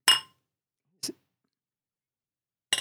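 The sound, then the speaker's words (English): Wine glasses holding a wine from the Basque country clink together in a toast: a bright, ringing chime at first, then two shorter, duller taps spaced about a second or more apart, with silence between and no voices. “They've never clinked like that before.”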